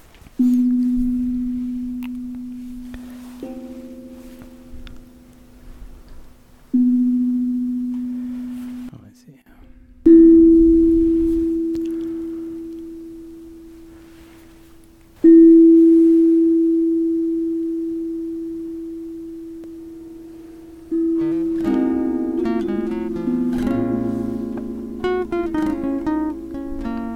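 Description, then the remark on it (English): A low chime struck about six times, each tone ringing out with a long, slowly fading hum, before the last stretch turns into a denser cluster of overlapping, shimmering tones. “You want to give a old chime or a new chime? New chime.”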